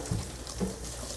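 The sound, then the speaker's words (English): Running tap water splashes softly and steadily for about a second, fairly quiet, with a couple of faint low clunks, like something being rinsed under a faucet. No one speaks. “I just rinsed it though. You can rinse it, it'll be fine.”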